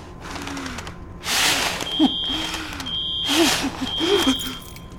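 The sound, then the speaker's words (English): A smoke alarm emits repeated high-pitched beeps at a steady interval during a fire in an office, heard over surges of rushing noise and low murmuring sounds in the background. “There's a fire in the office.”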